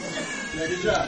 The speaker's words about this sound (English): there's a cat in the house. I just want y'all to know there's a cat in the house. I'm thankful it's not a black cat, but there's a cat in the house.